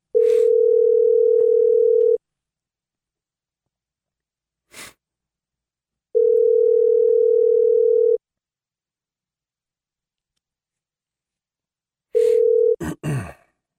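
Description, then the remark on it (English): A telephone ringback tone repeats through the handset as a call is placed to Dr. John Lott: a steady hum lasting about two seconds, sounding three times with long pauses between, then a clatter as the line is picked up. “Well, I suppose I should get Dr. John Lott on the phone.”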